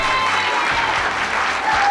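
A crowd applauding, with many hands clapping in a dense, steady wash of crackling noise that holds at an even, fairly loud level throughout, no voices standing out.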